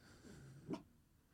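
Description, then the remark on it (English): A dog named Tokyo, called Opus for short, gives a single short, sharp snort, with faint breathing and rustling around it in an otherwise quiet setting. “Dog has joined.”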